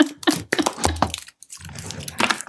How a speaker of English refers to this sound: Just give us a moment while we shuffle our cards. If we're shuffling cards and stuff about it, do not come to our houses.